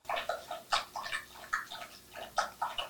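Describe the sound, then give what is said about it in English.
A dog laps water from a bowl, a quick, steady run of wet slurping splashes repeating several times a second, with no voices. “Drinking his water.”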